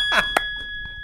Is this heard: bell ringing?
yes